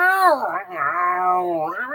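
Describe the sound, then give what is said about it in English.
A neutered male cat lets out a long, drawn-out angry meow, its pitch wavering and sliding through a couple of whiny rises and falls for about two seconds. “We took his balls early. No, that's why he's here for this episode. He has stuff to say too. He's mad.”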